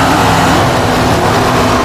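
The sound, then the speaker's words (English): A driverless car, used as a bowling ball, rolls back toward people, its engine humming loudly and steadily, a constant droning rumble with a faint whine, with no one speaking. “The car's got a mind of its own. It's coming back.”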